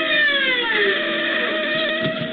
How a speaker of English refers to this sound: The siren gouges a path through the city swiftly like a wild saw trailing across the dark. And you ride it. Inside of you, you're screaming with it.